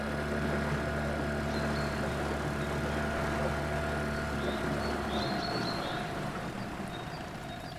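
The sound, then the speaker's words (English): A boat engine idles at Poveglia island with a steady, low droning hum and faint tonal whine, running continuously without voices and easing slightly in its low rumble toward the end. “I'm getting out of here as soon as you guys get off from this boat.”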